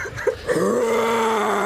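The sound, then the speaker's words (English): A person imitates a lion's roar with one drawn-out, steady voiced cry held for about a second. It is fairly loud, with a couple of short vocal sounds just before it. “Do I really have to do a roar?”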